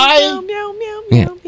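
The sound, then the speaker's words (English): A single voice sings a quick run of meow-like syllables to the bouncy Meow Mix cat food jingle melody, imitating a cat, ending on a louder, brighter note. “Who did the meow mix?”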